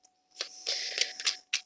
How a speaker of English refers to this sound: I'm going to put those cards back, and I'm going to continuously shuffle. Okay, Scorpio, you can knock these cards out of my hand